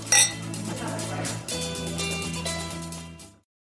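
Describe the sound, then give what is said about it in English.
A bright glass clink rings out at the start as glasses are clinked in a toast after a meal, followed by ringing tones and a second lighter chime about halfway through, clear, fading out near the end. “Thank you. Cheers. Cheers.”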